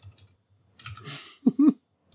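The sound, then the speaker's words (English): Quiet tapping on a computer keyboard that has no number keys: a few scattered key clicks, then a brief burst of keystrokes, followed by a short low murmur and another faint tap. “Oh, I have a keyboard with no numbers on it.”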